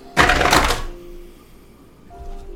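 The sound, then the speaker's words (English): A twenty-sided die (d20) clatters and tumbles across a hard tabletop in a quick, loud burst of rattling hits lasting under a second, then settles showing a 12, leaving faint room noise. “So rolled a 12 on this D20 here.”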